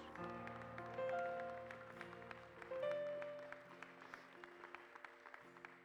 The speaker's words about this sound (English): I just cannot praise him enough for what he has done. Now give him a hand clap of praise.